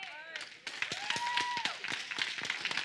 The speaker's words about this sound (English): Now watch this, though. Don't clap too fast, because that's one of the most hardest things for individuals to do.